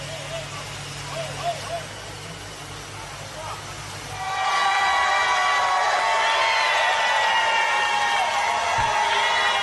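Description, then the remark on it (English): After a few seconds of low murmur and hum, a crowd cheering on a dismantling erupts into loud, sustained cheering. A dense roar laced with shrill whistle-like tones carries on to the end. “Listen to the cheering crowds, ladies and gentlemen.”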